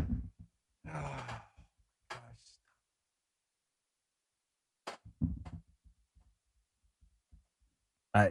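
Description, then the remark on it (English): An office chair rolls and shifts as a person rolls around in it, giving a few creaky scraping bursts and scattered low thumps, separated by quiet gaps, with no one talking. “That's me rolling around in my chair.”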